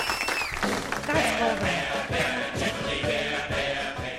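An audience claps steadily for about four seconds, a dense, fairly loud wash of hand claps with some voices and cheering mixed in.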